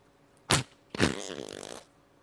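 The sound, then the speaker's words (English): Two squelchy, fart-like noises squeezed from slime putty: a short wet burst, then a longer sputtering, bubbly squeak that trails off. No talking. “Oh, that was violent. We'll, that one will rip your pants.”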